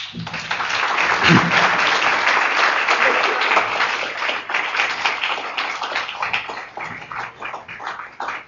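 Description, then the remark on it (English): A crowd breaks into sustained applause welcoming Dick Allen to the stage, dense clapping at a steady loudness before gradually thinning toward the end, with faint voices underneath. “Please help me welcome to the stage one of America's most big-hearted and genuinely adventurous creative spirits, my friend and the Zen master of Thrushwood Lake, Dick Allen.”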